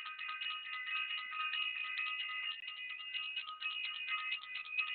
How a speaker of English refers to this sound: I want to ring the bell.